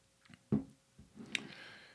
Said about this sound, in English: A little white tea is nice, by the way. I had to have a little sip there to cleanse.